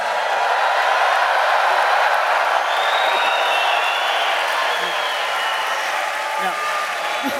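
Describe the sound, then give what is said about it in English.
A large crowd roars and cheers continuously just before a race starts, a dense, steady wall of noise that stays loud for the whole stretch without letting up. “There's a palpable energy in the crowd. Everybody is cheering and roaring.”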